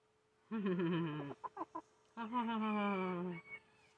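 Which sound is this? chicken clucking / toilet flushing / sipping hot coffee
chicken clucking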